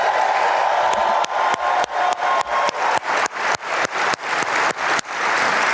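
An audience at an Illinois state government event applauds after Lieutenant Governor Juliana Stratton is introduced, loudly and steadily, a dense wash of clapping punctuated by sharp, regularly spaced claps that give it a rhythmic pulse. No one speaks.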